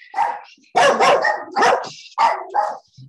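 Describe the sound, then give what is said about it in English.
A dog barks loudly, about five sharp, throaty barks in quick, uneven succession, with brief pauses between them and no one talking. “Yeah, see, you don't talk bad about Don Perlin in front of the dogs, all right?”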